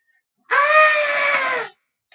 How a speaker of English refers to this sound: They are interrupted by a high-pitched scream.